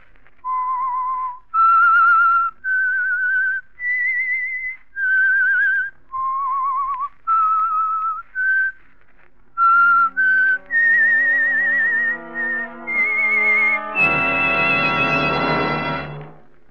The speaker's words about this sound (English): That whistle is your signal for the Signal Oil Program, The Whistler.